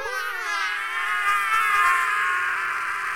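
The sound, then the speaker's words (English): A piercing, high-pitched super shriek, a character's superpower, holds for about three seconds, loud and steady with a buzzing, wavering edge and no break, rising slightly in intensity midway before it trails off. “Well, my power is a super shriek.”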